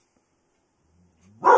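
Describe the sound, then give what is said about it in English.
A dog, Harpo, gives a low, building growl and then lets out a single loud, sharp bark at the very end, after a stretch of near silence. “Wait, there's a dog out there.”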